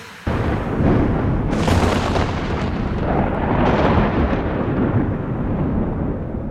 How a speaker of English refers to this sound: There was a storm coming on, and I was driving into it, and the night was black, and I felt small and lonely and frightened in the car.